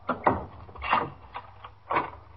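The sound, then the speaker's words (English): A door chain rattles as it is slid free from the door of apartment 3C, 379 East 65th Street, followed by the clatter and creak of the door being unlatched and opened for a police sergeant, several short knocks and scrapes with no talking. “I'll take the chain off the door.”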